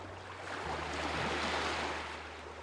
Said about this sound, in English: One of my favourite things in the world to do is listen to the sound of the ocean. There's just something about the sound of ocean waves that immediately makes me feel better, and it also helps me forget about my tinnitus for a while.